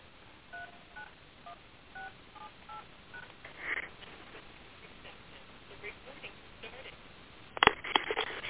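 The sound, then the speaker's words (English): A quick run of short electronic keypad beeps as a phone number is dialed on a cell phone to call back after a choppy line, each tone brief and evenly spaced, followed by faint rustling and a couple of sharp handling clicks near the end. “Let me try the cell phone, even though the cell phone is never really that clear.”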